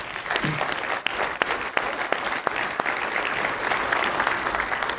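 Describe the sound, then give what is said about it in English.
A Grace Covenant audience applauds its leader steadily, a dense, even wash of applause with scattered sharper individual claps standing out, holding at a fairly loud level for about five seconds without anyone speaking. “So can we just applaud him today?”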